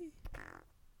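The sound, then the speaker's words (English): A single fake fart sound: one short, raspy, sputtering burst lasting about half a second, fairly loud, with no talking around it. “Damn, I wish I had a real one loaded up for that. A real fart? Yeah. You've had real farts all show.”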